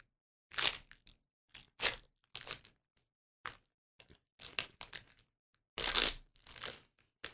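Crinkly plastic and cardboard packaging being torn and crumpled open, in a series of sharp, uneven rustling bursts with short pauses between them, the loudest tear near the end. No one speaks.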